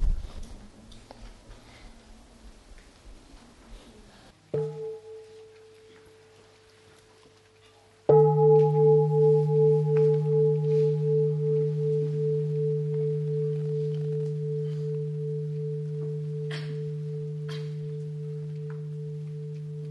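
A mindfulness bell is struck softly once, then struck firmly a few seconds later, its deep, resonant tone ringing out and slowly fading with a gentle pulsing waver, as Sangha members listen and breathe together.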